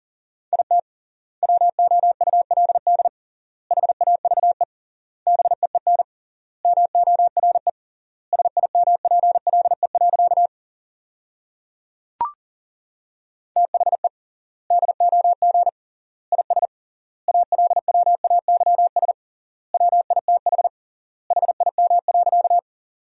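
Fast Morse code at about 40 words per minute sending sentences built from the top 400 words with triple word spacing: a single steady mid-pitched tone keyed in quick dots and dashes, grouped into words with short silent gaps, plus one sharp click partway through.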